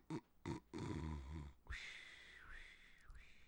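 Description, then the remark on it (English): A person imitates snoring: two quick snorts, a low rattling inhale, then a long, high whistling exhale whose pitch dips twice before it trails off. “That was snoring”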